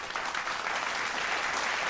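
A steady burst of applause, many hands clapping together in a dense, continuous patter at a moderate level, with no voices standing out over it.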